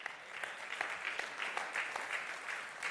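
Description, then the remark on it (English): A church audience applauding, with many hands clapping at once, a dense, steady patter of sharp claps with no voices over it, holding at a fairly soft, even level for the whole stretch. “Some of you didn't even clap.”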